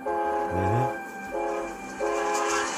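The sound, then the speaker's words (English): The horn of a Norfolk Southern freight train of 150 rail cars sounds in three loud blasts, the first short and bending, the next two longer and steady, with a low rumble of the train beneath. No one speaks. “A Norfolk Southern train consisting of 150 rail cars derailed and crashed.”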